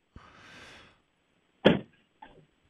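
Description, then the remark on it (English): A car door shuts with a single solid thump, preceded by a brief rustling shuffle and followed by a softer, smaller knock. No one speaks. “That was the car door. I think that was the car door.”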